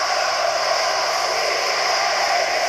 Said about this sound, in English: Listen to this crowd.